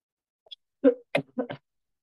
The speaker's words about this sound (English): Sorry, I've got a cough coming.